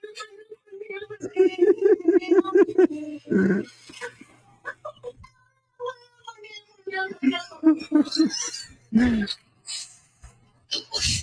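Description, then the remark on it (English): A black cat in a video gives a strange, warbling, drawn-out call in several wavering bursts, broken by rough breathy gasps, with further short yowls following at moderate loudness. “There's no way that's a cat, dude. It's a black cat, and it's that like, is crazy.”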